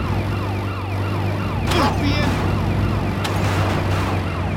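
A wailing police siren in a video game, police in pursuit after a car was taken, sweeps up and down repeatedly over a steady low engine drone, with a couple of brief sharp bursts cutting through midway; loud and continuous, no speech.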